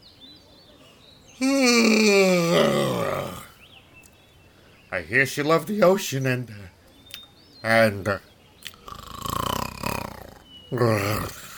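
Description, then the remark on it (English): A lion character, asleep, makes loud, drawn-out snoring sounds, a few rumbling, growly snores, interrupted by short bursts of mumbled speech in between. “Now the lion's asleep.”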